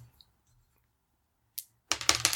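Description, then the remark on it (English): Dice are rolled for a failure roll in a game, rattling and clattering across a hard surface: one quick click, then a burst of sharp, bright tumbling clacks that bounce several times before settling. “Give me that great failure roll.”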